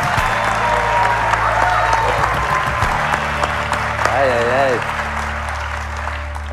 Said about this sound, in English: Well-deserved applause, I must say, Monsieur Pepin.